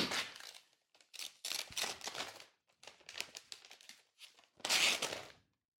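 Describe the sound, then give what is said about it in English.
Black and white gift wrapping paper being torn open, a series of crackling, crinkling bursts with short pauses between, ending in one louder, longer rip. “Black and white paper here.”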